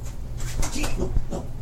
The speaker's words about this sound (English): Scare the shit out of what? Startling tiny dogs. Okay. He's a little fragile.